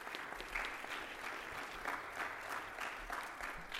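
An audience claps steadily in a dense, sustained round of applause for a senior at a send-off ceremony, with no clear voices rising above it, holding a fairly even level throughout.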